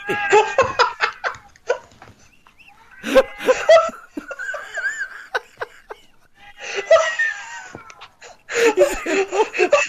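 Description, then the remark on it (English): A cat meows several times in drawn-out, wavering cries, while people burst into laughter before and after the meows. “That cat really needs some”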